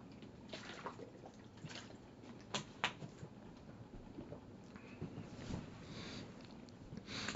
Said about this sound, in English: And before I say it, I'm going to take a swig of water.